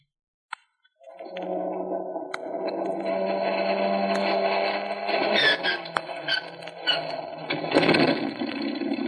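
An airplane's engine number one cranks and catches after a brief click as the ignition switch is turned on, settling into a loud, steady drone with rising and surging tones, with no talking.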